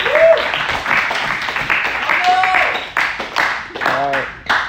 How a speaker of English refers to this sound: Can you give him a hand clap? Come on, real quick. Yeah.